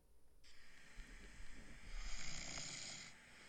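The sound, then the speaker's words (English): A husband snores in a single long, rasping breath drawn out for about three seconds, fairly quiet, with a low rumbling underneath and no talking. “Is that snoring? What? This is my husband.”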